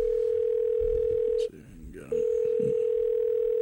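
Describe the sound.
A steady telephone dial tone hums loudly, cuts out for about half a second, then resumes, with faint muffled voices underneath as a radio show host places a phone call to a guest.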